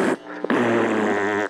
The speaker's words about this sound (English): Stop farting on your bubble butt.